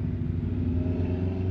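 A truck and a car rumble by on the road, a deep, steady engine drone holding at an even, fairly loud level for a moment with no voices over it.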